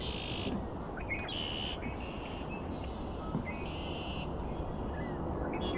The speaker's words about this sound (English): This marsh, it is mostly cattails. There's a lot of mud flat here too, and open water. On the edge of a forest.